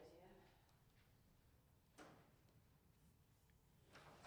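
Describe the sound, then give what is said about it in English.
A door closes with a single muffled thud partway through, in an otherwise quiet recording studio with a low background hum and a brief knock at the very end. “I'll just wait for the door to close.”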